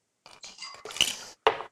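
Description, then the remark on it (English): A cocktail mixture with chipotle peppers is poured over ice back into a cocktail glass, with bright clinks and rattles of ice against glass, a busy stretch of pouring followed by one sharp final clink, with no voices. “And once you get that mixture all stirred up, we're gonna throw it right over some ice. Okay. Back into your cocktail glass that we started with.”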